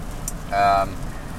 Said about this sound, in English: I'm tired after a big long week, and it's raining a lot on the road. We've got a big patch of rain coming through. It's as dark as anything.